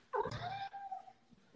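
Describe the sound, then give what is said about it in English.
A female cat lets out a single drawn-out meow, rising sharply then sliding down and trailing off over about a second, fairly loud, with no one speaking. “Cats need to know what's on the other side of the door.”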